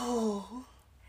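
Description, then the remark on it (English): A single voiced yawn that slides downward in pitch over about half a second, then trails off into a breathy exhale and quiet. “Excuse me while I just yawn over here.”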